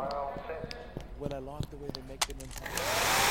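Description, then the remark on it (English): People talk over a low background rumble, then a blow dryer switches on near the end, on a set, with a loud, steady whoosh that fills the last moments. “Can we get hair on set with a blow dryer, please?”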